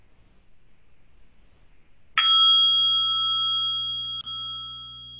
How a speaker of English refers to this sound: I'm going to ask Laura to ring our chime this morning.